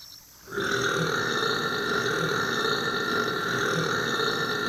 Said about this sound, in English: rubs his belly and lets out a burp the size of Minnesota.